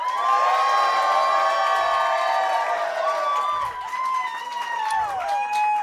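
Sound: audience clapping and cheering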